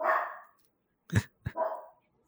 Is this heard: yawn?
no